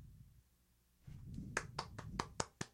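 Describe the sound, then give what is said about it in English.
Applause heard as a short run of about six sharp, evenly spaced claps, fairly quiet, over a low background rumble with no voices. “I don't know if you can hear that, but that's applause, because society has finally gotten right to where I want it to be.”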